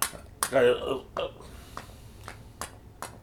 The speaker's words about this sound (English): And for those hearing the squeaking, that's the puppy killing her animal. She is sitting between us, squeaking her pink doogie, which is her favorite toy.